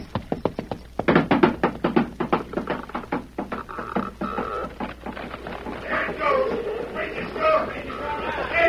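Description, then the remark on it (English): Steady, rhythmic hoofbeats of the horse Silver, carrying one man, clop hollowly across the planks of a wooden bridge, fairly loud. After a few seconds the hooves fade beneath other voices and noise. “I hope the weight of one man and horse is enough to do it.”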